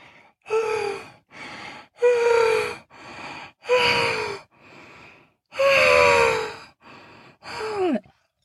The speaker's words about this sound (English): … was gasping.